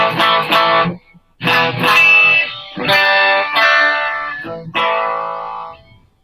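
An electric guitar plays a series of strummed chords through clean and distorted amp tones at once, each ringing out with a mix of clean tone and gritty distortion, loud, with short pauses between.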